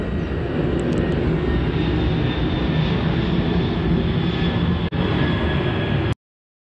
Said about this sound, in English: 6:36 a.m. AM, that's another plane flying over, and this is what they're doing. They're just patrolling over and over and over again.